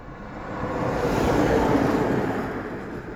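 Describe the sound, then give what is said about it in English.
A big truck rumbles past, its broad roaring noise swelling to a peak midway and then easing off, with no one talking. “Big truck.”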